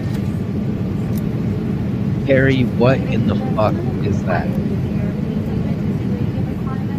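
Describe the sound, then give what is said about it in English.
A steady, loud engine roar like an airplane passing overhead fills the whole recording, a low droning rumble that never lets up while a person speaks excitedly over it. “Are you about to crash into another airplane, Carrie?”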